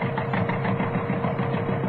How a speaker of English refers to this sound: Right, pressure on saw. Into tree. Well, it seems to be biting all right.